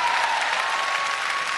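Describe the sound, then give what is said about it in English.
A crowd claps together in steady, dense applause as a clap offering to the Lord, a continuous wash of many hands at moderate loudness with no voices standing out. “If you believe it, give the Lord a clap offering.”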